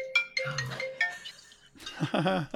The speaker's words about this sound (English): Maybe we should leave that in because it's a journalist's phone ringing. We should leave it in.